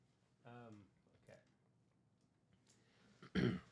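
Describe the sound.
A voiced throat-clearing rumble, a brief quieter sound, then after a pause a single loud, sharp cough.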